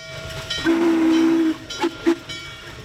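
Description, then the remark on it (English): A steam locomotive rumbles along while its whistle sounds one long, steady blast followed by two short toots, loud, with no voices. “You can hear sound that varies with how the locomotive is working.”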